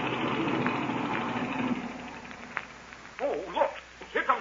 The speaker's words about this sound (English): Good. Then I'll cut the engine.